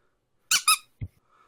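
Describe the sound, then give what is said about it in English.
A squeaky bee toy lets out two quick, shrill squeaks in close succession, followed by a soft low thump, with quiet surroundings and no talking. “Oh, Squeaky Bee.”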